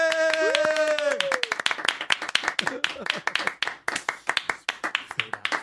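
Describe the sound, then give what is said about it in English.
A rapid run of hand claps, sharp and fairly loud, repeating steadily for several seconds, with a brief voiced exclamation at the start mixed in. The clapping is a contest to see who can clap longer. “I can clap longer than you.”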